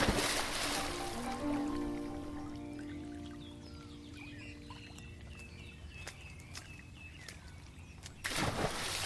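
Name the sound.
flowing river water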